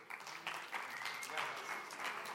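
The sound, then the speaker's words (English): An audience claps steadily, a dense, continuous patter of many hands at a fairly soft, even level, with slight swells in intensity throughout. “They're just clapping so that you will clap for them.”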